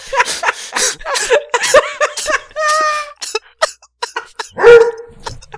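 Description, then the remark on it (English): A dog whines in high, drawn-out tones, then lets out a few sharp barks and yips, fairly loud, with a short burst of whimpering near the end. “We're 20,000 leagues under the sea, and I got this fuzzy whale over here, just giving me the business.”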